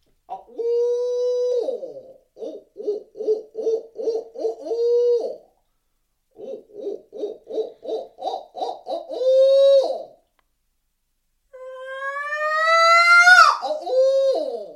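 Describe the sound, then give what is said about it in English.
Two rapid rhythmic series of loud owl-style hoots blown on a locator call while turkey hunting, followed by a shrill rising screech that climbs steeply in pitch, used to make a turkey gobble. No talking. “And I'll go through a couple hoots, and then we'll go to that.”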